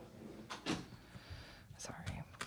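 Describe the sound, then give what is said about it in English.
A door thuds shut with a short wooden knock, followed by a second, lighter clunk and rattle a moment later, with faint background murmur. “Hey, get back here and shut this door.”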